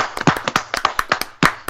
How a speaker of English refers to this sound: Anyway, yay. Let's give ourselves a round of applause, and then we're going to move on to the next thing.